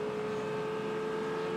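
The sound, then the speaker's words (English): A Proton Porsche race car in WeatherTech colours roars loudly and steadily on track, a sustained mechanical drone with a high whining tone that holds level throughout, with no voices. “That's the Proton Porsche.”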